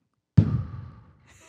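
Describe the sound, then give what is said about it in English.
A voice imitates a manatee surfacing to breathe: one abrupt, breathy whoosh of air, fairly loud, tapering away over about half a second, with a faint hiss trailing after. “And then when they need to breathe, they come up and they go.”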